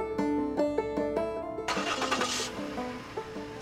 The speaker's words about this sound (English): Shadows of branches whip through the car window as we drive away.